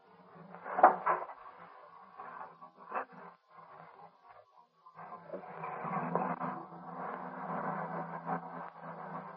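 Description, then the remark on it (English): A couple of solid car doors thump shut, followed after a short pause by the car's engine turning over and settling into a steady, rumbling idle. “Now get in, babe, and start her up.”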